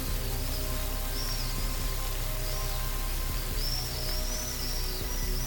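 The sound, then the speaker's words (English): Steady, even rain hisses throughout at a constant level, with a few faint, high bird chirps drifting in over the top now and then. “Together, they slipped through the trees while the rain washed away the piles of ash.”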